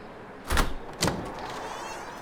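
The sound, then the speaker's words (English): Two firm knocks on an apartment door in Atlanta at 9 a.m., about half a second apart, followed by quiet ambience with no voices. “So I came over to his place, knocked on the door at 9 a.m.”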